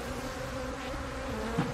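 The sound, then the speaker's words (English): Bees buzzing in a steady, continuous drone that holds at an even, moderate loudness throughout, with a slight swell near the end and no voices. “Harry's become an advocate for bees, sounding the alarm about declining bee populations and their importance in food production.”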